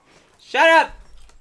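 A single short dog bark, sharp and fairly loud, rising and falling in pitch, against an otherwise quiet background with a faint low rumble afterward.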